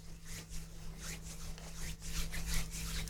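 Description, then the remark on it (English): Palms rubbing back and forth in a soft, steady swishing rhythm as the opening step of a rain clap, a hushed rasping texture repeating several times over a low constant hum, with no voices. “Rub your 2 hands together, making a very soft sound.”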